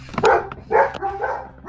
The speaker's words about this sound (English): Sorry about that. Those dogs, I don't know, man. Sorry.